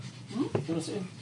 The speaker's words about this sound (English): Yeah, you know the fact that the dog's close to you and scratching, but you didn't hear.